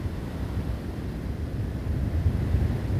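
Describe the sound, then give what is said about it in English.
A steady, low rumbling wash of sea surf rolls along with no voices, swelling slightly louder toward the end like waves breaking on a shore. “You're on the beach at the edge of the world, and it's warm here, as well as kind.”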